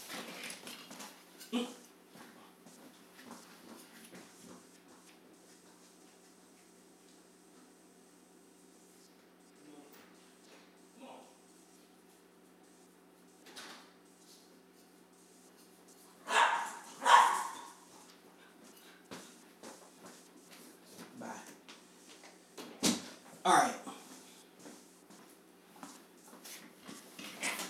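A dog waiting to come back in whimpers and lets out a few sharp barks in scattered bursts. After a quiet stretch comes a louder cluster of yelps, all over a low steady indoor hum.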